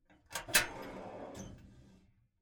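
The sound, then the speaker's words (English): A drawer slides open and shut with a wooden scrape, a couple of sharp knocks and a rumbling glide, clear with no voices. “So just imagine as we move on to a different category, we're opening and closing a new drawer”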